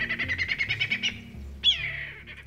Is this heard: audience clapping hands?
no